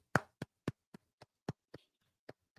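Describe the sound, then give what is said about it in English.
Hand clapping: about ten sharp claps at an irregular, slightly slowing pace, the first loudest and the rest fading somewhat, with no voices over them. “Ryan, you're not clapping.”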